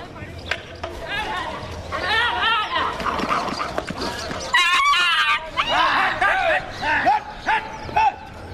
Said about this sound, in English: Guys coming in defense of the cow. That was intense. The dog just attacked the cow while it was lying down.